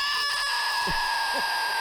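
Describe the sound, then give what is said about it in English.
A shrill, sustained bird-like screech, attributed to a Gallimimus dinosaur, with steady high harmonic tones, loud and continuous, with two brief low downward-sliding squawks partway through. No one speaks. “Oh, man, that's a terrifying, it's a terrifying screech.”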